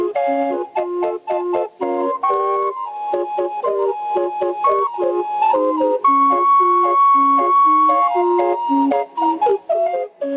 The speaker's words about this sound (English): A steam calliope had blown its 32 whistles. The blast rebounded and reverberated around Dreamland, piercing the quiet and the concentration of the diving horse.